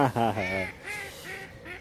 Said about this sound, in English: I don't want to get the species of bird wrong for Paul Ansorge has a go at me. This time here it's turkeys. I think it's a duck. They're all turkeys. Quacking. That's what I'm going to go with, Paul.